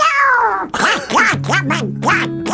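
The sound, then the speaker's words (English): A person imitates Donald Duck's voice in a ventriloquist act with a doll, making a string of squawky, nasal quacking bursts in quick, uneven rhythm, fairly loud, with a faint low hum beneath. “It's Donald Duck, isn't it? It's a version of Donald Duck.”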